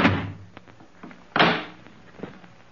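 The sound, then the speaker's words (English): A door thuds open as someone goes to look outside because no one is at the door, followed by a few soft knocks and shuffles, then a second heavier clunk of the door moving. Fairly loud, with no voices. “No one's at the door. I'll take a look outside.”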